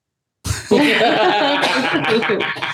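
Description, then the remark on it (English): A person breaks into a loud, raspy coughing fit lasting a couple of seconds, with harsh bursts and strained, throaty vocal sounds running together and no talking. “Now that coughing is brought on by you.”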